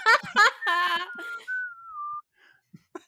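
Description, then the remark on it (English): Someone whistles the opening notes of a pop tune: a few quick pitched notes, then one long held tone that slides slightly downward before cutting off into near silence. “You think the characters' holes whistle? If they stand just right... You can hear the beginning of ….”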